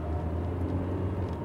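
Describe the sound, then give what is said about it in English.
A steady low engine rumble from a car driving off, continuous, with no voices over it. “Parker waves them both in the car and puts both their locations into the GPS and drives off”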